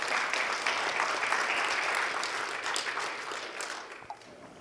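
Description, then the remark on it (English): A church audience claps for everyone who worked on shutdown: a dense wash of applause that holds strong for several seconds, then gradually thins and fades toward the end, with a few stray claps trailing off. “And let's just give a clap to everyone who worked on shutdown.”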